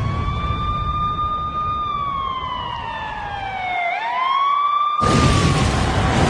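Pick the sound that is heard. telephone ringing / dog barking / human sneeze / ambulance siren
ambulance siren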